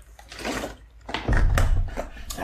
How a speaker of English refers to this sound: So let me just take a little drink of water here. My voice is going. I'll be back in 1 second.